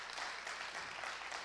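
An audience claps their hands for the Lord in a steady, dense wash of applause, many hands overlapping into a continuous bright crackle with no pauses or voices.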